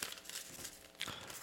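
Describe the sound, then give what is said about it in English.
Quiet crinkling and crumpling of a piece of paper taken to keep score in a game, lasting a moment and a half, with a brief sharper rustle near the end and no voices. “So let me get a piece of paper so I can keep score of who gets what.”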